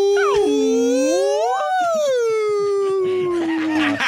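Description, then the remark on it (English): A person voices a long, sliding moan in imitation of whale song, dipping low, rising, then slowly descending for about four seconds, loud with no other talking. “I need to speak to the whales real quick.”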